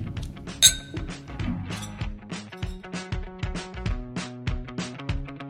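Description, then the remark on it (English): A single bright glass clink rings out near the start, like glasses touched together in a toast, over steady rhythmic background music that continues to the end. “Cheers, boys. Cheers. Cheers.”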